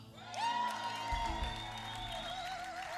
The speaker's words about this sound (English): So first up, we're going to welcome up to a huge cheer from the audience,